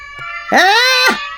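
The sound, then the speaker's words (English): A single loud, drawn-out meow from a kitten named Goldie, rising and then falling in pitch, with a faint steady tone underneath and no talking. “How is the new kitten, Goldie?”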